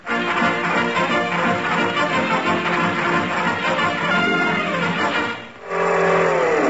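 A car engine revs loudly and pulls away as the driver sets off to chase a jeep, roaring steadily as it accelerates, with a brief dip near the end before a rising, higher-pitched whine as it shifts and speeds up.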